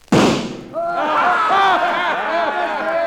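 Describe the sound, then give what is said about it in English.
A single sharp pistol shot, fired at a little gold eagle on a flagpole across the street, cracks out loudly, then several voices burst into overlapping shouts and hollers that carry on steadily after the bang. “Get them hog legs out and let's get to shooting.”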